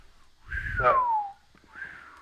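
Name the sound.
person whistling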